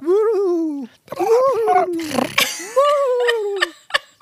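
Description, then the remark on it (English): A person imitates a bird call with their voice: three drawn-out, wavering hoots that rise and dip in pitch, separated by rough, breathy vocal noise, with no speech. “Can you make the bird call that he was going to make when Don arrives?”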